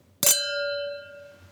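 A single bright clink of glasses touching in a toast, followed by a clear, high ringing tone that slowly fades over about a second, with no voices.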